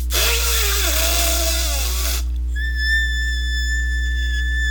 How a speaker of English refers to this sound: No, I was trying to whistle. You gotta blow, not break your throat. If I try to whistle, it'll sound like I'm squeaking.